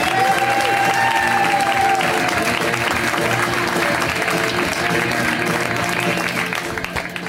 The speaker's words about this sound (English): I like it when you pick a song that makes everyone clap in unison. Did you notice that happen at the end where you all got very conformist very quickly? Like, we know how to clap to this.